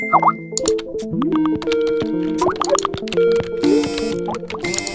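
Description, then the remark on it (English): A dense, overlapping barrage of phone and computer notification alerts for tweets and messages at work: bright chimes, bloopy pops and rising chirps stacked one after another for several seconds, busy and cluttered, with no one talking. “It's a constant thrum of notifications, tweets, and messages.”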